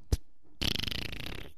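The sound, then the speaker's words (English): A brief dull thump, then a buzzy fart that sputters in rapid pulses for about a second before trailing off, with no talking. “Just a fart.”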